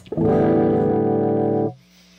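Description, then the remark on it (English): A loud, distorted electric guitar played into a wide-open microphone rings out steadily for about a second and a half, then cuts off, leaving a low, steady amplifier hum and buzz underneath. No one speaks. “You still hear buzz? I threw my mic wide open because I had to play guitar into it”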